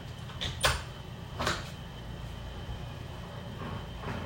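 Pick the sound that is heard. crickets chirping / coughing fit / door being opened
door being opened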